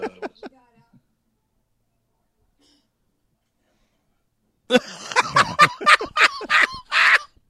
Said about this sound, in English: So is there a bird in this cage or...